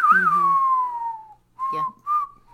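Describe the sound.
A spaghetti western theme tune whistled alone: one long, bright note that slides slowly downward, then two short, clear whistled notes after a brief pause.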